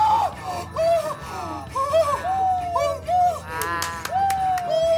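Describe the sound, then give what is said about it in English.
A person in an audience lets out a series of high, wavering screams and shrieks, loud, over a noisy crowd with some sharp claps or bangs in the background. “screaming in a way that is not healthy and it's not in a way that anyone has ever screamed at Dak before”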